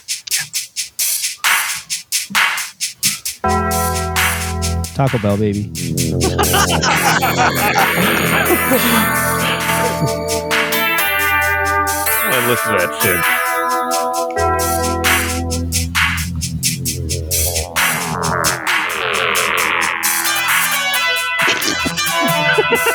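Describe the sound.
A loud, busy stretch of the theme song of an 1980s action movie, with dense electronic keyboard tones and swooping pitch glides, after a few seconds of choppy opening notes; a voice briefly speaks over it.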